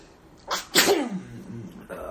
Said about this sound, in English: I'm about to sneeze.